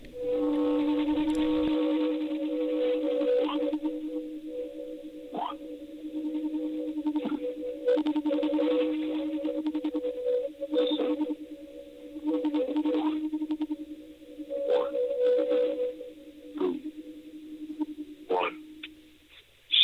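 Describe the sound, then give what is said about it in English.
A goat horn blown on a recorded phone message heard when calling a number: a long, steady, low droning tone with a higher overtone, wavering and briefly breaking with clicks for about twenty seconds, no voices. “Was that a goat or a horn? It was a goat horn.”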